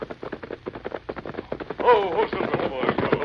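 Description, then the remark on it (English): A large crowd celebrating at night, far from town, with many voices blending into a steady din, rising into louder shouts and cheers partway through, mixed with sharp popping bursts like gunfire or firecrackers. “Sounds like a large crowd. Some sort of celebration.”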